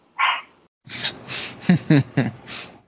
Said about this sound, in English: What? No, just the yapping going on in the background. Yeah. These dogs, like, I swear, I don't know what they bark at sometimes. I think it's their own shadows. Welcome to the life of having a dog, man. They bark at anything moving, a leaf.